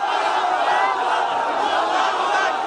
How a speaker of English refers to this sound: The White Helmets rescue team in Syria, using drills and their hands, saved an entire family, pulling them out of the rubble one by one, with a crowd of hundreds erupting in joy.